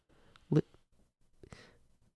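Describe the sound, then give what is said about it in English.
A man blows his nose: one short, loud honking burst, then after a pause a softer, breathier blow that trails off. No one speaks. “That it's my father blowing his nose after, I guess he just got out of the ICU.”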